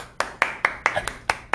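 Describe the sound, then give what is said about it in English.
An audience clapping at a game show in a steady rhythm: about seven sharp, bright claps spaced roughly a fifth of a second apart, fairly loud and with no talking. “Clap it up.”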